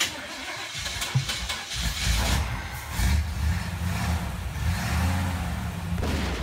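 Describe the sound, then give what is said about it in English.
An old car's engine rumbles and revs with a low, rough growl, broken by a couple of sharp, loud pops as it backfires. “Damn, the hoopty backfired.”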